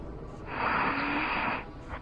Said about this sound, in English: That is just heavy breathing.